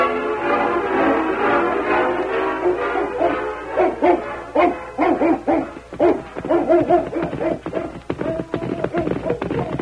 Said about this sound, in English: Hey, Ain't that a hound dog? Dog, he's following us. It's Rover. Rover.